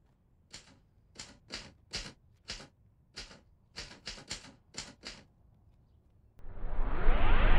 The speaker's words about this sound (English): Typewriter. I mean, there's all those awesome little, like, moments. I mean, after he types out Shark Attack on the typewriter and everything.